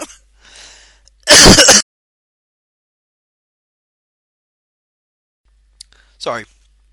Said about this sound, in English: Sorry, I was coughing in there.